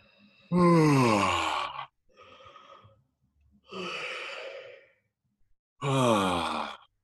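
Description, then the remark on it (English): Three deep, drawn-out yawns, the first sliding down in pitch into a groan, with a breathy open-mouth inhale between them and short pauses of silence. “And when you yawn, that deepens the ability to draw in oxygen.”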